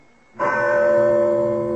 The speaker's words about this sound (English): Well, that is quite a bell to summon the servants. Yes, my father's idea. So no matter where on the grounds they might be, they'd hear him. He had an elaborate system of rings for the gardener, the chauffeur, butler, and so on.